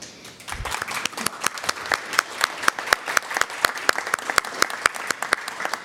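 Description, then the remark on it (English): A room full of people applauds steadily for several seconds for elected officials and community leaders standing at a Human Rights Commission awards event, the claps dense and overlapping, with a few sharper individual claps standing out. “So actually, if you wouldn't mind standing as well, so we can give you a round of applause for your service and all of the things you do for our community.”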